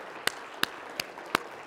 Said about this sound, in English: Come on and give me one more hand clap if you wouldn't mind today, please.